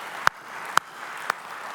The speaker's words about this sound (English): So can you give them a round of applause?